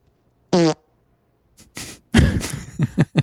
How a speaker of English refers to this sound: Ooh, fart number 1000. I bet this was a special one for him.